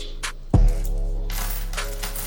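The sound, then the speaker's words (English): A few sharp metallic clinks of coins knocking together as they are stacked, one louder click standing out, followed by a steady rustling background with no voices. “Well, let's kick it to a sponsor while we stack these coins.”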